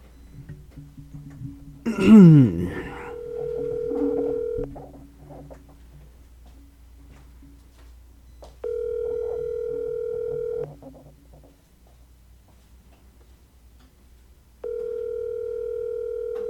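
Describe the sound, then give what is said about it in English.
A brief burst of dialing, then a phone's ringback tone buzzes three times, steady two-second rings separated by long pauses, heard clearly over a low background hum. “You ain't give him a call right now? Call right now? This might be a back-to-back phone call”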